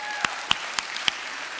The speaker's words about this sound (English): Would you give the Lord a round of applause for that?